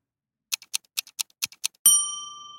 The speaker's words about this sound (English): Martha's watch ticks slightly out of rhythm from the wall clock.